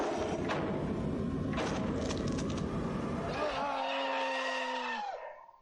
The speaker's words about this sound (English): Nice. I love the music. I love that scream.